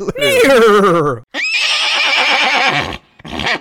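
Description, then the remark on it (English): A horse whinnies loudly, a quavering, descending neigh followed by a breathy, snorting second call, then a brief burst of the same sound at the end. “Like these fucking, nay, what?”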